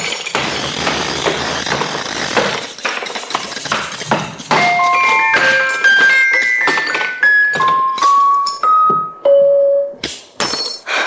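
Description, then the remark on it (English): A hammer smashes a music box with a rapid series of heavy, cracking blows, then scattered bright, ringing metallic notes ping out irregularly as the broken comb's tines sound between the final strikes. “Is this a habit of yours, breaking up music boxes?”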